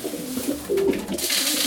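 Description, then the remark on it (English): Pigeons cooing as they are being fed, a few soft, throaty warbling calls overlapping in a steady murmur, with no one speaking; the birds roost on a shed roof and in nesting boxes. “So essentially, Helen's now feeding her pigeons.”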